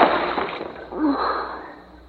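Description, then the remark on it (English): An object drops into water with a rushing, noisy splash, then a second softer surge with a brief low gurgling bloop before the sound fades away. No one speaks. “You dropped it in the water.”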